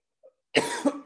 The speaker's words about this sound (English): I almost died then. That cough come out of nowhere. I know that is not COVID.